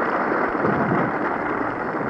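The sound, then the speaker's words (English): A large baseball crowd roars in a dense, steady wash of cheering noise that stays loud and unbroken for about two seconds, with no voices standing out, as Walter Johnson of the Washington Senators steps up. “And of course, ladies and gentlemen, you heard the roar.”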